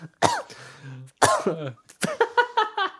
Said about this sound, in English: I farted at the same time while I was coughing.